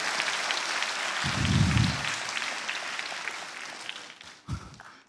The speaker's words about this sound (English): Hey, give a clap now to encourage us.